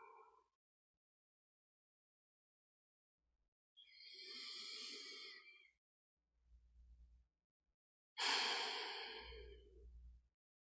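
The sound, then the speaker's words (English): Two slow, deep breaths, each a long airy intake followed by a soft, breathy exhale, separated by a few seconds of quiet, with no talking. “Notice the little bit of silence here now in your space after this bit of movement and breathing.”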